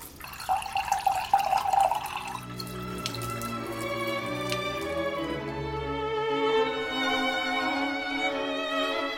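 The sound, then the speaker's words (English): Spring water from a basin, filtered through rock millions of years old, pours into a glass, starting with a bubbly splash and settling into a steady trickle whose hollow ringing tone climbs in pitch as the glass fills. No one speaks. “That has filtered down through millions and millions of year old rock to fill my glass.”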